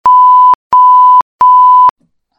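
Three identical electronic beeps, each about half a second long, sounding at a steady pitch with short even gaps between them, loud and clear with no other sound around them.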